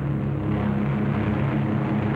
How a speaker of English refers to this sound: As the fighters and bombers swing victoriously away from Marcus Island, towering columns of smoke show the thorough job our boys have done.